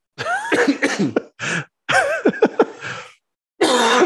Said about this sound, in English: No, it really grinds my gears. When I keep coughing? When I'm thirsty and I can't get up because I'm recording a podcast and the fridge is right over there.